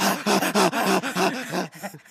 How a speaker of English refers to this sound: I can hear her panting.